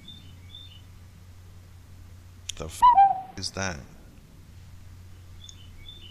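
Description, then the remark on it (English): Faint, high bird chirps come in short bursts in spring in St. Louis, a few at the start and again near the end, with a brief spoken exclamation in between over a low steady hum. “A bird. It's spring here in St. Louis.”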